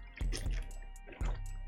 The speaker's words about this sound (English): Let me take a squig of this fucking water. Oh, man.